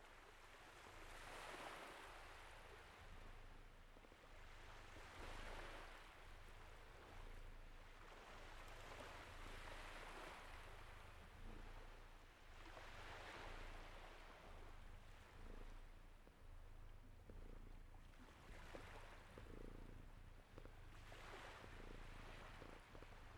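Sea waves roll in and wash over the shore in steady, surging swells every few seconds, with a constant low rumble of wind and water underneath and no voices.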